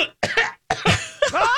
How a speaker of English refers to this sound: Oh, excuse me. I'm coughing like.